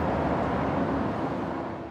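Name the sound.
heavy road traffic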